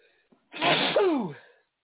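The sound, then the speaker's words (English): A single loud sneeze bursts out with a sharp explosive onset and a falling, breathy tail, lasting about a second with near silence before and after. “Bless you.”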